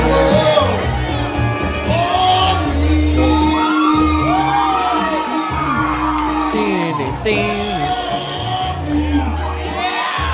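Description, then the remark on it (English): An older man sings loudly at karaoke into an amplified mic over a booming backing track while someone shouts and screams in the background amid a lively, noisy crowd. “That's me screaming, yeah, in the yeah, background. And that was an old guy singing.”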